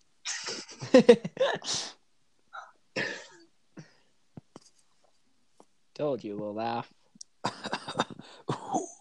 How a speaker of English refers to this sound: Well, you really need to fix that cough. Pardon? You really need to fix that cough. You need to fix that cough.